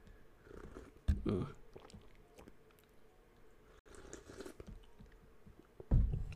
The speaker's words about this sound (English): Sip my coffee here.